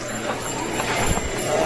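Horse hooves clip-clop in a quick, uneven patter over a steady background hiss, fairly loud for a brief moment.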